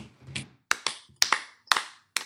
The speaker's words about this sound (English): Slow clap.